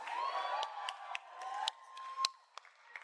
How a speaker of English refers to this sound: Someone's clapping too close to their mic.